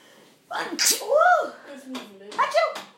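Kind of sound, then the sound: human body sound, sneeze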